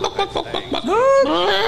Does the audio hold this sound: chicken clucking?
yes